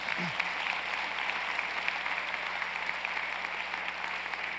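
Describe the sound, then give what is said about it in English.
An audience at a worship service applauds a guest one more time, a dense, even wash of many hands clapping that holds at a constant loudness throughout, with no voices rising above it. “Clap for him one more time, please.”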